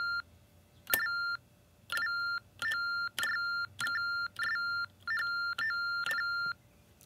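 An electronic keyboard beeps as letters are typed on it: about nine short, bright tones in a quick, slightly uneven rhythm, each starting with a faint click, with no talking.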